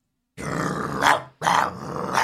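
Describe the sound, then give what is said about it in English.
A deep, menacing growl from an ugly beast of a dog appearing on a computer screen rumbles loudly, in two long sustained bursts separated by a brief pause, with a harsh snarling edge that swells near the end of each. “Before Mark or Rachel can answer, an ugly beast of a dog appears on your screen.”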